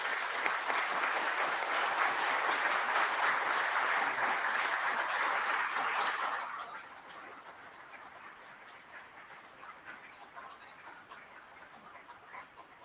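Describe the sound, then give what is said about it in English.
Steady applause from a crowd for three witnesses who took an oath fills the first six seconds, dense and loud, then quickly fades to a low murmur with a few scattered claps lingering. “Y'all quit clapping. You're cutting in on my time.”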